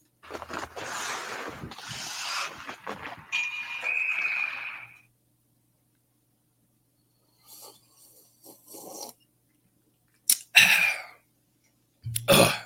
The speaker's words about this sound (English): Yeah, you hear that? That's me taking a little sippy sip of bourbon, because holy fuck, does this team make me drink?